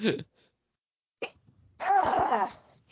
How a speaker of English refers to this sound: I almost sneezed.